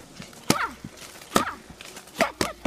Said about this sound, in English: As it turns out, we have internet videos that answer this question already, like this video of a 10-year-old Russian girl smashing a tree to pieces.